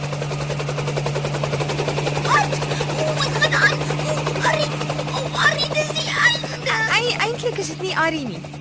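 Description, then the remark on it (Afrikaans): A landing helicopter's steady, droning engine hum fills the whole recording, loud, while excited voices and honking, bird-like cries break out over it. “Ek is jammer ek het julle met die helikopter laat skrik.”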